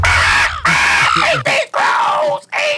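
Four loud, harsh crow caws ring out in quick succession, each a raspy, drawn-out squawk with short gaps between, fairly strident.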